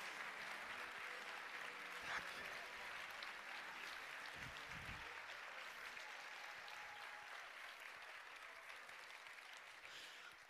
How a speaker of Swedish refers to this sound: Hej. Hej, vilken applåd.